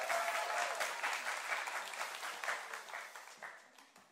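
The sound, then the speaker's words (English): Sustained applause from an audience welcoming a woman up onto a stage, a dense crackle of many hands clapping at steady volume that gradually thins and fades toward the end. “They were clapping for you.”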